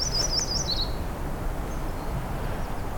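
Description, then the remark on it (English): A myrtle warbler sings a quick, high, sweet trill of about five notes lasting roughly a second, then goes quiet against a steady background of wind-like outdoor noise, in a forest of mostly black spruce with a little white spruce. “Get closer to this myrtle warbler.”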